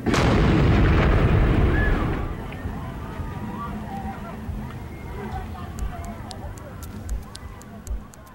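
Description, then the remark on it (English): A homemade pipe bomb spiked with nails and screws explodes among a concert crowd at 1:20 a.m. in a single loud, rumbling blast that fades over a couple of seconds, leaving agitated crowd noise and scattered voices behind it. “Then at 1:20 a.m., as law enforcement contemplated a full evacuation, the homemade pipe bomb, spiked with nails and screws, exploded.”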